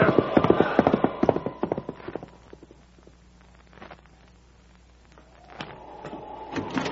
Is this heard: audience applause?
no